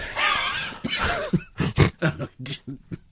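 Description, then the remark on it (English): A voice imitates the cartoon dog Muttley's wheezy cough: a raspy, drawn-out wheeze followed by a quick run of short, breathy hacking bursts, fairly loud, with no other sounds. “A little Muttley cough.”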